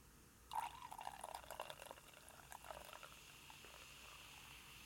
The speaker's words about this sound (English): Sorry, that sounded terrible after the pour sounded great, but yeah, the pour was real nice. I had to sip the, it was about to overflow the glass. Yeah, get you a little more too